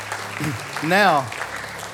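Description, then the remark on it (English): An audience applauds with steady, dense clapping throughout, and one voice briefly rises and falls in a cheer or whoop midway through. “Let's applaud in case we missed someone.”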